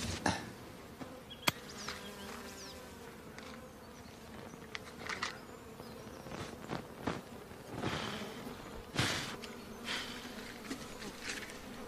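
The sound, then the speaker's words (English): A steady buzzing of bees drones throughout, its pitch wavering as the insects move about, with a few brief clicks and rustles breaking in along the way. “Concern is the latest decrease in the bee population.”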